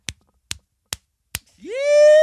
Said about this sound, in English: Oh, let's see if they can hear it. Hang on, let me slap it. Son, come here. Let me slap it and see if they can hear it slap.